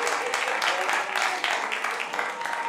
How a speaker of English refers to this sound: Why are you applauding this?